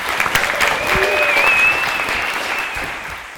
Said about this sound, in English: Big round of applause.